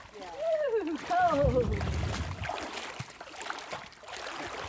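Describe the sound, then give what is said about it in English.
Heavy sloshing and splashing as feet step off the shoulder of a road and wade through shallow swamp water in a bald cypress forest, a burst of churning strides followed by quieter ripples, with a brief voiced sound at the start. “off the shoulder of the road and into the water.”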